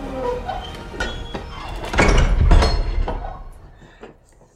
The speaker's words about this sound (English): With the ring falls to the floor as you clutch your demon hand, and the door to the pentagram chamber shuts.